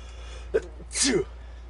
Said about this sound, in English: It's allergy season. Yeah, and there was another sneeze, but that time I found the button. Wah, wah, wah. Actually, no, you didn't, because I heard you sneeze. You heard me sneeze because you're on a separate mic than the one that actually records.